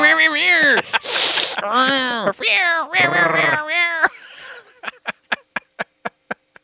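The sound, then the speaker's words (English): Someone vocally imitates an air horn to introduce the Battleborn rotation of the week, with several loud, wavering, nasal blasts that sound more like a yowling cat, followed by a quick run of about eight evenly spaced sharp clicks. “Sound like a cat, not an air horn.”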